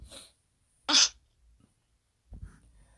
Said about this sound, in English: My dog is in the background going... My real-life Pokemon is in the background going insane.